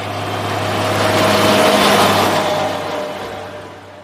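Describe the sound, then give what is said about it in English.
A logging truck rumbles past in front of a farmhouse, its engine roar and tire noise swelling to a peak midway and fading as it moves off, with a steady low drone underneath. No one speaks. “After that, with great fearlessness, he began to direct traffic, strutting up and down the yellow lines in front of our farmhouse, pecking at the wheels of passing logging trucks.”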